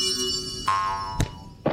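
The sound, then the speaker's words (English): A cartoonish punch effect of a big red boxing glove hitting someone: a springy, ringing boing tone swells in, then a sharp thump lands, followed by a second, softer smack shortly after. “So I could say, amulet, hit Trevor with a big red boxing glove.”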